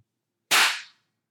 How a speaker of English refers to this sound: God, these claps in this new apartment are supreme. Yeah, can you do it one more time, though? Why? Yeah. It just, like, doesn't show up on the waveforms, which always makes me nervous.